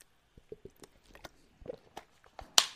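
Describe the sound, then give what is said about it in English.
Someone takes a sip of Kroger purified drinking water: a string of soft, wet mouth clicks and swallowing gulps, ending in one louder, hissy breath or splash. No talking. “That is delicious Kroger purified drinking water.”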